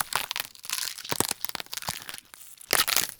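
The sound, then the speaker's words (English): Crisp snapping and crunching of celery stalks being twisted and broken as a bone-breaking sound effect, with a rapid series of sharp cracks and a louder burst of splintering near the end. No voices. “Snapping celery and other crunchy vegetables are classic tools for these gory sounds.”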